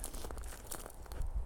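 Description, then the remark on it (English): Crunchy footsteps of a person walking on icy ground, a quick series of gritty crackles in steady walking rhythm, with low rumbling background noise and no voices. “I mean, I'm actually listening to my footsteps, and as I'm looking around, I knew the ground was getting a little icy, so you can hear the crunching more.”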